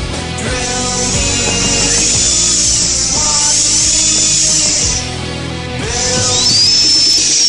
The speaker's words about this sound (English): I don't know if the sound of a dental drill makes your palms sweaty or not, but it sure does mine.